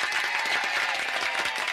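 An applause sound effect given as the "applause of the day": a burst of dense applause, many hands clapping rapidly in a steady, bright wash of sound that holds at an even loudness throughout, with no voices over it.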